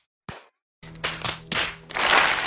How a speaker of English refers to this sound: No, it's on clap. Sorry. So it's 3, 2, 1, clap. On clap. So 3, 2, 1, clap.